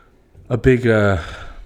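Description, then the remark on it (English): A person yawns once: a sharp breathy intake followed by a drawn-out voiced groan that sags in pitch and fades out, with no other voices around. “Stop yawning.”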